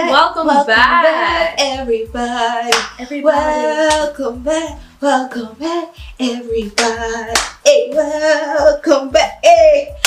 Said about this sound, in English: Welcome back. You missed the clap.